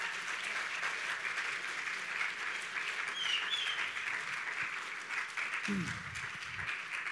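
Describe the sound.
Sustained applause from a crowd, a dense steady clatter of many hands clapping at even loudness throughout, with a brief voice or whoop rising near the end.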